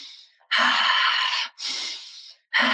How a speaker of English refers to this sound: and I always like to do like the goddess breath, so breathing in through your nose and out through your mouth like that.